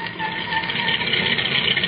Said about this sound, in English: There's a truck just arrived with a delivery.